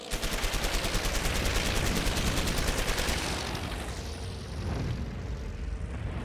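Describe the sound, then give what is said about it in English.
A loud, rapid burst of aircraft machine-gun fire, including tracer and incendiary rounds, rattles for about three seconds as a plane strafes an aircraft on the end of a tarmac, then gives way to a heavy roaring engine drone. No one speaks. “And watched, saw with their own eyes the plane pulled out of the hangar onto the end of the tarmac, and then a bunch of guys jumped up on it and poured gasoline all over it, cleared it, and then they look up, this plane just unloads on it.”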